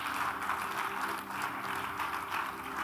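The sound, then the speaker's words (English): An audience at church claps together in a dense, steady wash of applause that holds at an even loudness for about three seconds, with no voices heard. “Once again, clap for yourself.”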